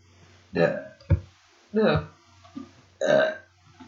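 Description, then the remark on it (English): Several loud, croaky burps, three long drawn-out belches with a short sharp one between, separated by brief quiet gaps. “That would feel sick, but it's one of those burps that you won't push.”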